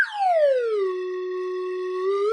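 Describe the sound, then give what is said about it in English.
A voice imitates an 'up whistle' during a game shot: a reedy tone that swoops down in pitch, then holds one steady note for about two seconds before lifting slightly at the very end. “Give me an up whistle.”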